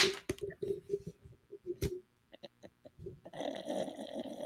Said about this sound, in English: I'm sorry. It's a little congested snore too, ain't it?